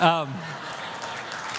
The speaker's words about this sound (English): No, we don't need to clap for that.